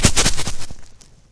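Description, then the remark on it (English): Dice rattle and tumble in a quick burst of sharp clicks, about half a dozen hits in under a second, then settle and fade into quiet. “Ooh, dice. Dice.”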